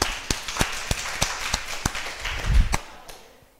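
Steady, evenly spaced hand claps, about a dozen sharp slaps in a brisk rhythm, like a crowd clapping in unison, fading out at the end with no talking.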